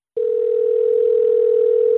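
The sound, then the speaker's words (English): A steady, unbroken electronic tone on a phone line to a cordless phone, not a fax machine, holds at one pitch for about two seconds, loud, then cuts off abruptly. No one speaks. “That was a fax machine, Rich?”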